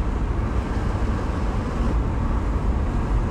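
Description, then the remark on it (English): A steady, low rumble of road traffic fills the scene, a continuous wash of engine and tyre noise with no distinct individual pass-bys and no one speaking. “I didn't know you were doing right when the cars were coming.”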